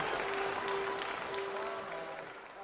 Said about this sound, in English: And everybody's just standing there applauding, and Iris is like, oh, if I could just spontaneously combust into nothing, that would be fine.